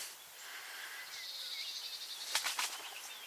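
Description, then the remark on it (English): A quick burst of pigeon wings flapping, several rapid clattering beats, rising over a quiet outdoor background with faint bird calls and no talking. “Pigeon.”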